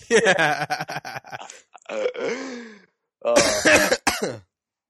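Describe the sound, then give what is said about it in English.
Several rough, raspy coughs and throat-clearing sounds come in three quick bursts, loud, with short pauses between and no speech. “That's weird, I could hear myself coughing through your Skype combo.”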